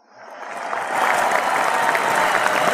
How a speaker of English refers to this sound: Look at that. You have an audience cheering for it, and you haven't said a word yet.